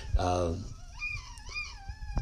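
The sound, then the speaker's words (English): A new tea kettle whistles, a steady shrill tone with a few overlapping pitches that waver and bend, over a low rumbling background. “This new pot's got a nice whistle.”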